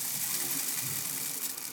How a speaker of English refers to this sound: After pulling out a red button-down shirt, light khaki pants, and dress socks from his wardrobe, Elliot then walked to his bathroom and turned on the shower.